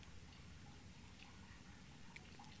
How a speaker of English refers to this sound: Maybe I can't do anything with it, but I just feel like maybe the hose can just go right into the water instead of just dripping constantly all fucking night. You're just going to hear this all day. Like, listen to this.